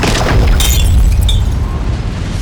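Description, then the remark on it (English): A loud, concussive blast of wind with a heavy rumbling roar, as bright shattering cracks of a trident breaking burst through it. The roar stays forceful and steady for a couple of seconds, with no voices. “A concussive blast of wind shattered the trident and rocked the tide goddess back.”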